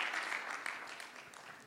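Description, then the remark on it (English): A church audience at a gospel service clapping their hands together once again before being seated, dense overlapping hand claps forming a steady, bright wash of sound that tapers slightly toward the end, with no talking over it. “Clap your hands together once again and please be seated.”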